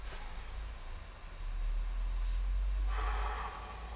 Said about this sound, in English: I want us all to just play along if you would, but everybody take a really big deep breath. Ready?